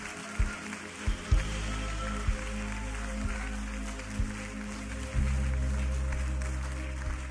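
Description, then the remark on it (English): A crowd claps steadily as a clap offering during a sermon, a dense, even patter of hands that runs the whole time, with a few dull low thumps breaking through and no clear voices. “and from this moment on, you're standing up and speaking against the fox and advancing the kingdom of heaven, give him a clap offering like you actually are signing the contract.”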